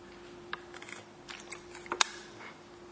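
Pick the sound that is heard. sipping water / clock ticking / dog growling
sipping water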